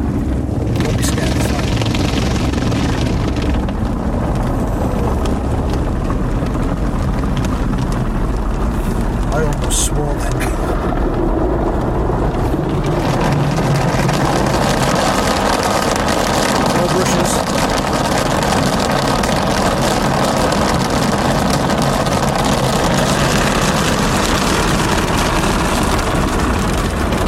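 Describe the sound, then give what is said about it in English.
Big rotating automatic car wash brushes churn and slap against a car as they polish it, heard from inside the car: a loud, steady rumbling whoosh with a deep motor drone underneath, while voices murmur now and then. “Massive leather, I think, brushes that are going to polish the car.”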